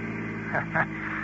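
A steady, low engine drone hums throughout as Nifty's car, driven by Hooks, cruises along, with a couple of brief swells of noise rising over it partway through.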